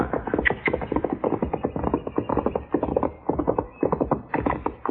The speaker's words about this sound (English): Hey, by heaven, it's a horse.